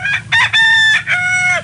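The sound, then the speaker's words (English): A single loud rooster crow, as used to open the morning show on radio station WJLS in Beckley, West Virginia, a full cock-a-doodle-doo of several short rising notes ending in a long, sustained final call, with no other voices. “In 1938, while still in high school, he began appearing on radio station WJLS in Beckley, West Virginia, where he opened the morning show by crowing like a rooster.”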